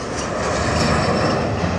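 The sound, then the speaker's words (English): A steady, loud roar of an airplane engine fills the whole moment, a dense continuous drone with no breaks and no voices. “It's Transportation Week, and today we're talking about airplanes.”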